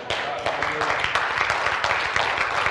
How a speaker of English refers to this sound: And see, we can clap about that, but I want to steer you guys.